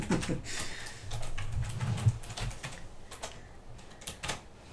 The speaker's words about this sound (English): There it is. You heard Gus typing it in. There you go.